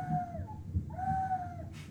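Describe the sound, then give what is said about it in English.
A voice imitates an owl call with two drawn-out, hooting tones, the second longer and steadier, over a low background rumble with a brief breathy noise at the end. “That doesn't sound like an owl. That is... That's still is better. An owl.”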